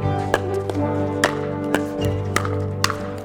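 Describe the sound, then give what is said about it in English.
Hollow pops of a pickleball paddle hitting the ball, about six sharp knocks at a loose half-second rally rhythm, sounding over a steady low humming drone. “In cities, townships, maybe even bigger backyards, a hollow sound can be heard alongside cheers, jeers, and triumphant screams.”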